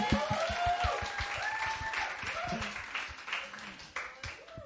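A crowd applauds steadily for several seconds, a dense wash of many hands clapping at once, with a few high whooping and cheering voices rising over it before it gradually thins out.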